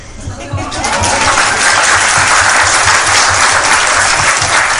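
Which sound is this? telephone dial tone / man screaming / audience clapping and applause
audience clapping and applause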